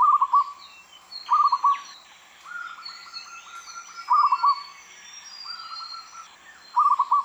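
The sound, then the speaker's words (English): A zebra dove coos in repeated soft, rapid staccato trills, one burst every second or so, clear, while other birds chirp faintly in the background. “Their soft, pleasant cooing calls are a very common part of our soundscape.”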